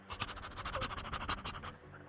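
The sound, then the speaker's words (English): A person imitates a dog sniffing at a man's crotch with a quick, steady run of short, breathy snuffles lasting under two seconds, fairly loud and hissy, then it stops abruptly. No talking. “No, I'm being a dog sniffing at a man's crotch.”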